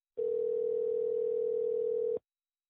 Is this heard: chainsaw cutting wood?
no